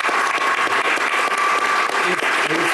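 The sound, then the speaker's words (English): An audience gives a round of applause in appreciation of a panel, a steady wash of many hands clapping at once, dense and sustained at an even level for the whole few seconds, with no voices standing out. “For this panel, can I have just a round of applause of appreciation for the fantastic panel?”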